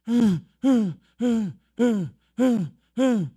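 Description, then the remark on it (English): A human voice imitates a desperate, panting deer: six evenly spaced, loud, groaning cries, each falling in pitch, repeated in a steady breathless rhythm with short gaps between. “It's in panic and goes everywhere and starts breathing with a cry, pants.”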